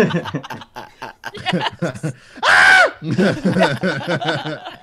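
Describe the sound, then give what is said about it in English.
A screaming goat sound effect bursts in once, a loud, harsh half-second bleat-scream that rises and falls in pitch, with people chattering and chuckling just before and after it. “You guys, the goat has spoken. One of those screaming goats.”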